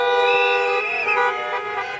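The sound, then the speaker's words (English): Several car horns blare together in a loud, continuous overlapping honk for about two seconds, with steady traffic noise rumbling underneath, in traffic snarled around the Arc de Triomphe in central Paris, France, by a convoy of cars, campervans and tractors protesting COVID vaccine passes. “Despite fierce warnings from police that they would be barred, cars, campervans, tractors and more from across the country drove into central Paris, snarling traffic around the Arc de Triomphe.”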